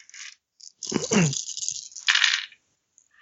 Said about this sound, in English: is shuffling the cards